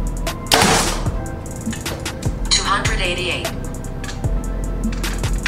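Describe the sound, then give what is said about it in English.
A Behr Divergent compound bow, set at 29 and 70 pounds, fires a 450-grain middle-weight arrow with a sharp, loud snap, followed about two seconds later by a softer whooshing thud, over a steady low background rumble. “Grab our middle weight, which is gonna be 450 grains.”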